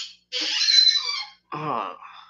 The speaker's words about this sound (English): That's a squeaky. That's a squeaker. I gotta spray that with some WD-40.